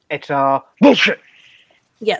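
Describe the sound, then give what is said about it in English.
A person speaks briefly, then lets out one sharp sneeze with a breathy, hissing tail before talking resumes. “Bless me.”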